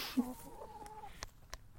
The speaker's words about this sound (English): There's a little chicken hiding in front of me.